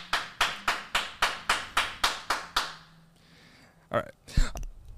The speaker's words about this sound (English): I don't know why we can't just do a normal round of applause. We need to have like a team You Should Know meeting. And we need to like, because we've gotten some comments on the round of applause.